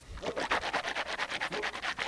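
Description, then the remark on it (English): Someone rinses their mouth out with water, swishing it around in a quick, steady run of about fifteen wet sloshing pulses at moderate loudness, with no talking. “I'm going to try to rinse my mouth out right now with some water and try it again and see if it changes my mind.”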